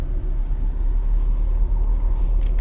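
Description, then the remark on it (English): A car approaching on a quiet country road, heard as a steady, deep engine and road rumble that stays fairly constant in loudness throughout, with no voices. “God, I wish I could take a picture of that barn right there, but there's another car coming.”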